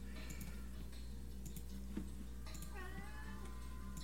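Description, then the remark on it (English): A pet cat meows once, a drawn-out, wavering cry toward the end, faint over a steady low electrical hum with a few soft ticks and clicks. “My cat's meowing.”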